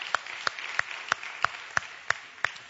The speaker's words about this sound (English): And if the Blessed Life series has been a blessing, can you give the Lord a hand clap? Can you do that?